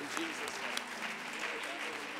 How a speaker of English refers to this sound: Let's receive them with a warm hand clap of reception.